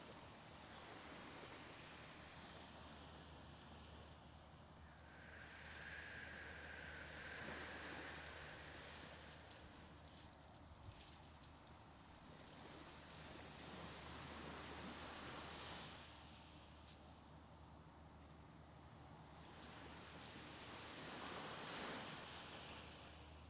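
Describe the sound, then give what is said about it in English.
Ocean waves break and wash onto a beach in slow, rolling surges, swelling and receding roughly every seven seconds over a steady background roar, with no voices present. “Allow yourself to breathe here for a few more moments of peace and of breathing with the waves.”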